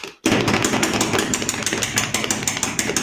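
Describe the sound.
A fast, continuous drum roll tapped out by hand, dense rapid beats running loud and steady for about three seconds after a brief moment of silence.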